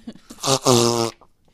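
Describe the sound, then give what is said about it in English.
A loud fart sound: a short buzzy burst followed immediately by a longer, sustained raspy blast that cuts off sharply, with no talking. “Sorry, I had to fart.”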